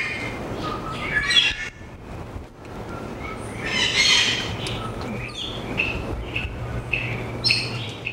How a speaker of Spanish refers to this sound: El yunque, cotorras libres en la naturaleza.